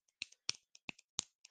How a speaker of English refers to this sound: I'm going to snap my fingers like the poetry people do.